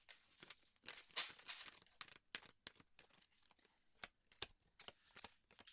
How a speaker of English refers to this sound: you've been pulling cards like this and shuffling forever, and it's so ASMR.